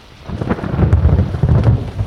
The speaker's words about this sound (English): We were not 10 days at sea when a storm blew up faster and fiercer than any I'd seen in all my years. The waves broke over the side of the ship, and we were only hoping to stay afloat